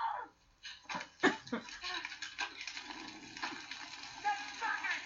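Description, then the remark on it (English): Water sloshes and splashes in irregular bursts as a woman carries buckets of water to a barn fire, spilling about half, with a few sharper splashes and faint, indistinct voices in the background. “She's getting the dang buckets, man. And she's spilling like half of it.”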